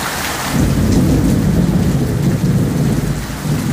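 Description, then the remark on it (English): Steady, heavy rain pours down in K-Town, with a deep rumble of thunder rolling underneath throughout. No voices, just the dense hiss of the downpour and low booming. “Let's listen to that rain in K-Town again.”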